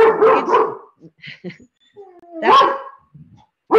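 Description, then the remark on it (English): A dog named Gizmo barks in a few loud, sharp bursts with a brief whiny yip in between, separated by short quiet gaps. “that's what my dog Gizmo thinks about it.”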